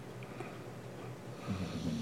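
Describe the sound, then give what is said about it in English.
A female pet dog snores with low, rumbling snorts that stay steady and grow a little stronger toward the end. It is fairly quiet, with no voices. “They're absolutely going to hear Piggy snoring on this episode.”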